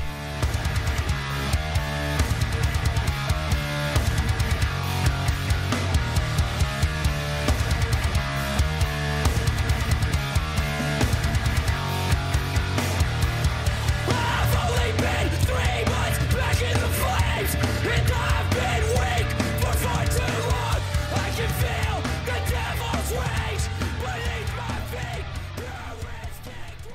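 A loud, dense hardcore punk song with driving drums, thick distorted guitars and shouted vocals, pounding steadily throughout before fading slightly at the end.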